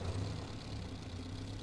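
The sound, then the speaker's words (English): A car engine idles steadily with a low, constant rumble, moderately loud, with no speech over it. “Hey, new sound effects for the car.”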